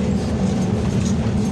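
A big diesel engine runs a pump with a steady, heavy low rumble and a constant mechanical drone. The level never changes and there is no talking.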